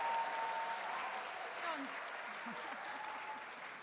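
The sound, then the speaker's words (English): A crowd at an international church applauds steadily as an archbishop is welcomed, a dense wash of clapping with some cheering and voices mixed in, holding at a fairly even level throughout. “You got a bigger cheer than me.”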